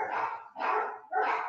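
Dogs bark and fight in three harsh, rapid bursts, each about half a second long, loud, with no voices.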